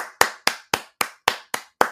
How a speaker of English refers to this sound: Round of applause.